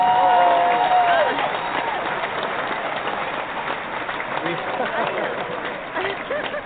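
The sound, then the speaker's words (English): Steady applause from a large crowd giving a standing ovation, with cheering and a brief whistle near the start, loud and continuous throughout before easing slightly toward the end. “We have to give you proper that. Applause, of course.”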